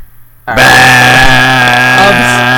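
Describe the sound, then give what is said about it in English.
An apartment door intercom buzzer, used to buzz someone into the building, sounds after a brief quiet moment: a loud, steady, harsh electric buzz held for about two seconds with no talking over it. “Okay, I'll buzz you in, mate.”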